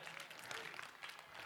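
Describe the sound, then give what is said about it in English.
A small round of applause in a church after the preacher's leap in celebration: light, scattered clapping from a modest group, steady and brief without building to a loud ovation. “I thought I'd get a bigger round of applause for that leap.”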